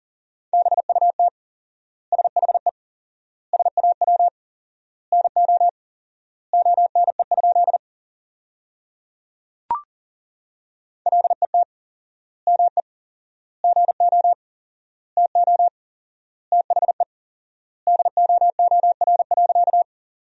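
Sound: morse code practice tones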